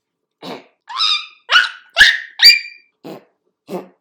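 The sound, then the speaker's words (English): A moose gives a string of about seven sharp alarm barks, loud, some hoarse and some more tonal, spaced unevenly over a few seconds with no talking. “And when they're alarmed, moose of either gender may bark to warn other moose of danger.”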